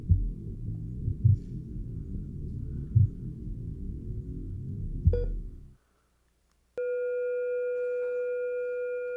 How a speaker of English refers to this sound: And listen to the heartbeat.